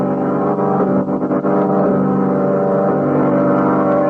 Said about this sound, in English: Oh, car skidded. Went off the road.